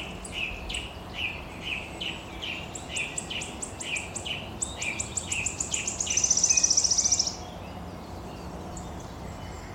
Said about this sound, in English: But for now, we just have a little bit more wood warbler before we head to Sussex.